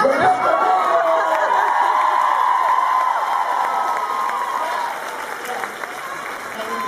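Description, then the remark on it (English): A crowd cheers and applauds loudly and steadily to welcome a guest, with whoops and shouts rising over dense clapping, fading slightly toward the end. “One more time with an incredible welcome for Sexy Bexy.”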